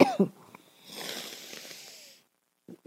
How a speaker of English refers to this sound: I am so fucking congested, and I'm sorry to be sniffling.